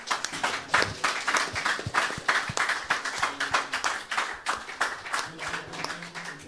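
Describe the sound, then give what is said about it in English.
After a prayer, an audience breaks into a sustained round of applause, dense overlapping claps rising and falling steadily for several seconds, moderately loud, with a few faint voices mixed in. “Let's give a round of applause once again, Lord.”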